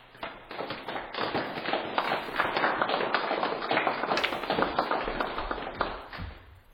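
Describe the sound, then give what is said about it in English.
A light patter of scattered clapping from a small crowd, steady and moderately loud for several seconds before tapering off slightly at the end, with no voices. “A smattering of applause breaks out.”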